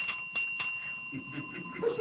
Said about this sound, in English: We are, get over here and ring this bell. Tell my people. Hit it.